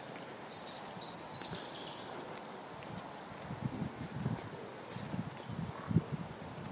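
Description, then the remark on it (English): A frog croaks several times outdoors in low, throaty pulses at an uneven pace, over a soft bed of outdoor ambience with a faint high chirp early on. “I can hear a frog. Huh. Sounds like a frog around here.”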